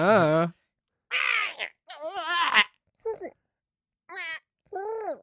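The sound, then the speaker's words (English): A person imitates a squealing jungle frog with a series of high, wavering squeals and squawks, six loud bursts separated by short pauses, some rising and falling in pitch with a croaky edge. “Squealing frog. Yeah, just a squealing frog.”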